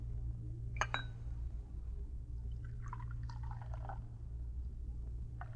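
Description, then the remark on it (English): A brief metallic clink, then coffee runs from a brass urn spigot into a cup in a few short streams, the gurgle climbing in pitch as it fills, over a steady low hum. “Just turn that brass spigot on the urn.”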